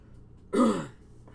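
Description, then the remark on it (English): A man performs a single rough, throaty cough, half a throat-clear, fairly loud, lasting under half a second against quiet background hiss. “And he just starts coughing, like, too much, to the point where it looks like he's going to fall forward out of his throne.”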